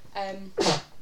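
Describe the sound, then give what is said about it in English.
A single sneeze: a short voiced intake rising into a sharp, breathy burst, loud and abrupt, then quiet. “Bless you.”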